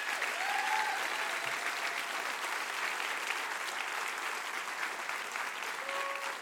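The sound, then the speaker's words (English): An audience claps together in dense, steady applause that holds at an even, fairly loud level for the whole stretch, with a few faint voices or whoops rising briefly above the clapping. “Clap like you believe it.”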